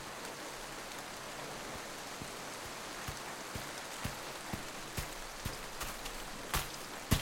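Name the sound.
rain falling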